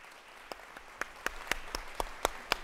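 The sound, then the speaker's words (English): An audience at the City Club of Cleveland claps to welcome the 2019 State of the Great Lakes panelists, a steady run of sharp, distinct hand claps, about four per second, moderately loud over a faint background murmur, with no talking. “I can clap for you.”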